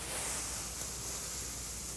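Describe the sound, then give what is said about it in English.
Foley ocean waves made with a blue microfiber pillow held in the hands: a soft, steady rushing hiss of fabric swishing, imitating surf washing in, with no clear individual crashes and no voices. “Well, you can hear those waves crashing up on the sea.”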